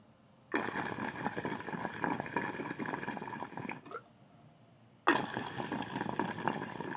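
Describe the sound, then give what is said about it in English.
Water bubbles vigorously through a glass pipe's disc percolator in two sustained bursts, a dense gurgling that stops briefly before starting up again, as water and smoke pass down the stem, out beneath the bottom discs and through the cuts on the side. No voices. “So this perc right here, essentially the water and smoke's going to come down through the stem. It's going to come out underneath these bottom discs and it's going to go through all the cuts on the side.”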